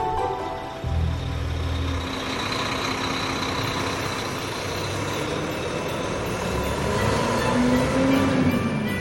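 A heavy truck rumbles steadily close by, its engine droning loudly throughout, with a deep low hum at first and the engine pitch rising near the end as it pulls up.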